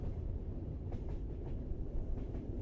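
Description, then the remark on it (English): Steady low rumble of a train car rolling along the rails, with faint intermittent clicks over the constant drone, heard from inside at moderate loudness, no voices. “Step inside, close your eyes, and enjoy this train ride with me.”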